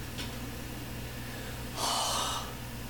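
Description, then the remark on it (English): A person gasps as they start to breathe again: a sharp, breathy gasp bursts out loud, followed by a faint earlier intake of breath, with a low steady hum underneath and no talking. “You all are startled when you hear a gasp.”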